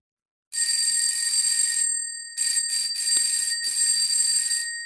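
A loud electric bell, designed as a bicycle bell and also meant as a doorbell, rings with a rapid metallic trill: one long ring, a short pause, then several quicker bursts in a row. No voices.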